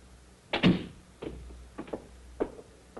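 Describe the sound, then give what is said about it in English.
A door opens with a sharp clunk and rattle, followed by several softer knocks and clicks as it swings shut, with no voices. “I'll show you to the door.”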